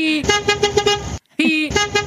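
A loud car horn blares twice: a long honk of about a second, a brief pause, then a second honk that keeps sounding to the end.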